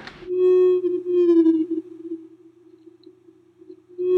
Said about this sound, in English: This recording of a blue whale is being played at 20 times its original speed.